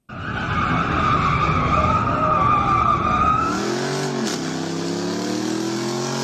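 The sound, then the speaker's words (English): A loud, sustained tire screech with a high whining pitch, then car engines revving with rising and falling harmonic tones, all continuous with no talking, in an area that has become increasingly residential. “the sound of revving motors and screeching is really loud.”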